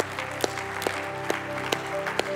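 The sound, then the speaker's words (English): An audience claps in unison, sharp loud claps landing on a steady beat about twice a second, over sustained organ-like music and a soft murmur of crowd noise. “I love that moment when we clap because, listen, all of heaven has a party when one person comes back.”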